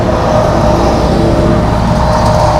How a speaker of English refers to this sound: That looks like a fun job. I know, right? Just driving around a lawn mower cutter thing. All day at the park. It's like a little go-kart.